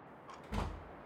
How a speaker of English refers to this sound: Did you knock? Did I knock? Yes.